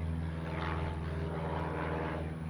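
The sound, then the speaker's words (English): A single-engine Piper Arrow propeller airplane drones past over center field, its landing gear just raised, about to turn out, its steady buzzing engine tone holding strong harmonics and swelling slightly as it flies by, with no voices over it. “It's a Piper Arrow flyby.”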